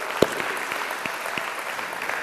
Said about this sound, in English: Give God another praise clap today.